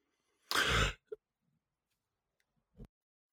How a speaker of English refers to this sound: Sorry, I was just clearing my throat there. I was just getting emotional as you're working through all that.